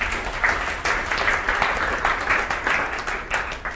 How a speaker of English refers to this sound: Side note before we continue, okay, you can clap.